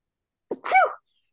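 A single loud sneeze: a short catch of breath followed by a forceful burst that trails off quickly, with no one talking.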